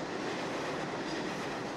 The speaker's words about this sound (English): It's still early, barely 7 a.m., but morale among commuters on the Atlantic Avenue platform in Brooklyn is already bleak. As an R train pulls into the station, the frustration on the riders' faces is evident, and the reason why is clear.